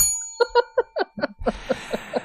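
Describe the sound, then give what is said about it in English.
A small bell dings rapidly about nine times in a quick, uneven rhythm, fairly loud, with a faint hiss creeping in behind the later rings. No one speaks. “Where's my bell?”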